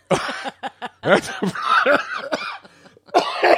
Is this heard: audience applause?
no